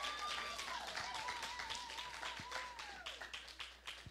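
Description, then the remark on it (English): A round of applause for the speaker's wife as she is called up: many hands clapping in a dense, steady patter for several seconds, with a thin wavering whistle-like tone gliding above it. No talking. “Can we get a round of applause for my lovely wife?”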